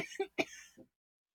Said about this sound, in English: Okay. Just get it out. I've been doing this coughing thing lately, but without being sick.